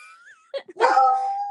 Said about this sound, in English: Oh, Daisy! Daisy. Recording. Who's she barking at?